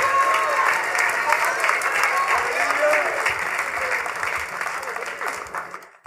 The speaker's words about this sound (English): So clap your hands and rejoice, for the Lord has already given you the land and the victory.